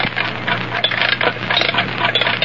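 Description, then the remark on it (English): An old metal alarm clock is wound up and set down on a lead table in the center of a magnetic field, giving a steady stream of light rattling clinks over a low electrical hum, with no one speaking. “Now, wind up that alarm clock and put it here on this lead table in the center of the magnetic field.”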